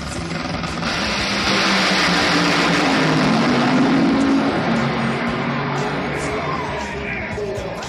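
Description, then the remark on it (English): The 5,000-horsepower engine of Alexis DeJoria's Tequila Patron Toyota Camry nitro funny car roars at full blast, a dense, crackling wall of sound that holds steady for several seconds with a faint rising whine running through it. “That's what 5,000 horsepower sounds like”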